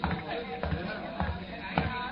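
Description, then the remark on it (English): A courtroom crowd of spectators and newspaper reporters murmurs excitedly while waiting for a jury verdict, a steady buzz of many overlapping voices with no words standing out, punctuated by a few dull thumps at roughly half-second intervals. “Behind them, the crowd of spectators and newspaper reporters buzzed excitedly, their eyes fixed on the closed and locked door of the jury room.”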